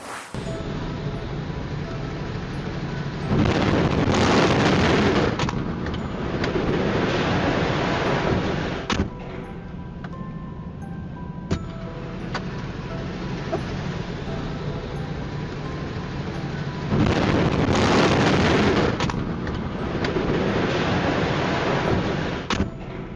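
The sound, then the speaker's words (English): A loud, booming grain silo explosion with a long roaring rumble, heard twice as a video is replayed, over a steady background hum, with faint voices in between. “I was focused on the explosion there.”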